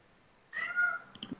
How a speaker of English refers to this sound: Someone's cat agrees.